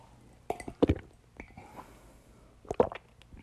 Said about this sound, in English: I'm just having a sip of water, sorry.